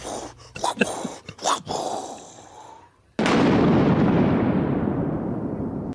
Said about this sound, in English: And he's just throwing lightning bolts.